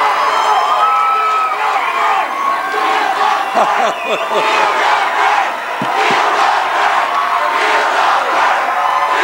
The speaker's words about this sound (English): The crowd chanting, "Feel the burn," which has become the hashtag movement